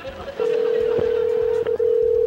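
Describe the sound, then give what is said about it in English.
A phone call's ringing tone: a loud, steady electronic hum that starts after a brief moment and holds almost unbroken to the end, with faint voices murmuring beneath it. “Got it ringing now. One ringy dingy.”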